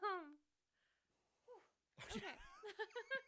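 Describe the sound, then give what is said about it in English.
A single sharp sneeze bursts out, followed by voices and a bit of laughter, after a brief vocal sound and a quiet pause. “I started to have to sneeze and then I was trying to catch it.”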